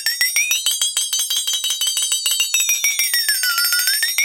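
A vibraslap rattles in a fast, steady buzz of metallic clicks for about four seconds, with a bright ringing tone that slides up, dips, and rises again. No one speaks.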